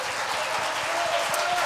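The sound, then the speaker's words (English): An audience claps their hands together in praise to the Lord, a dense, steady wash of applause from many people for a moment. “Let's give the Lord a good hand clap of praise tonight.”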